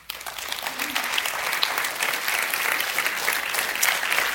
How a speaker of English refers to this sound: I recognize as much as, and that's awesome that you guys are clapping, and it's exciting.